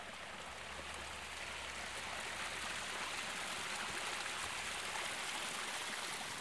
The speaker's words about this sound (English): There was lots of water. So if you walk through here, you could hear the sound of water flowing down the different water courses and rills here and culverts from the underground springs above the garden.